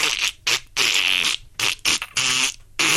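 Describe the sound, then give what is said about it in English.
A person mimics dolphins with a quick run of about six loud, high-pitched squeaky chirps and buzzy clicks, separated by short gaps and with no words spoken. “But and then the dolphins went...”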